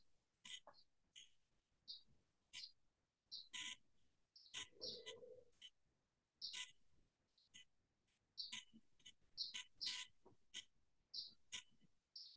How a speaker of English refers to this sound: I got this wonderful bird chirping outside.